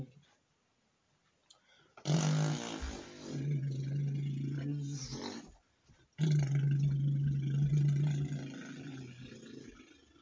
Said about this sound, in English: Thank you for the helicopter ride.